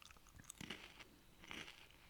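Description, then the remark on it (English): Quiet crunching of someone chewing Cheez-It Extra Toasty cheese crackers, a few crisp bites and grinding bursts spread over two seconds, with no talking. “Can you hear the crunching on the mic?”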